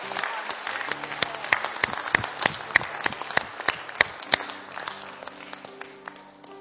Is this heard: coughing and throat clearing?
no